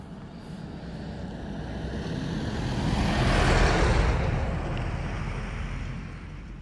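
A car approaches and passes by outdoors, its broad road hiss swelling to a peak midway and then fading as it moves off, with no voices over it.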